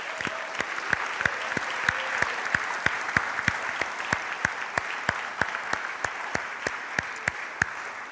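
An audience applauds steadily for about eight seconds, a dense wash of clapping with some claps falling into a regular, even beat, at a consistent level throughout with no speech.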